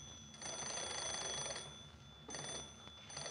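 An old hand-crank telephone bell rings in two bursts as a woman turns the crank to call the judge's number, a long jangling ring followed by a shorter one, bright and metallic, with no voices.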